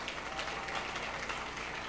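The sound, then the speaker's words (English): A crowd at a church service claps together in a steady, dense patter of many hands, a continuous wash of sharp overlapping claps at moderate volume with no voices over it. “Give Jesus a clap of it.”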